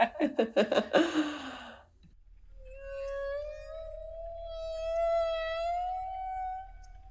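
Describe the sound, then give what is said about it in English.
A humpback whale call: a quick train of rough, pulsing grunts gives way to a long, sustained tonal moan with ringing overtones that slowly rises in pitch, heard alone with no talking. “It's a humpback whale sound.”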